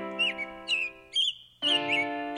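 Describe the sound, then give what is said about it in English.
Birds chirp in a backyard in short, bright bursts, about four quick calls in a row, clear, over a steady low humming tone in the background. “Coming up, how listening to the birds in the backyard was a turning point in my own sarcoidosis journey.”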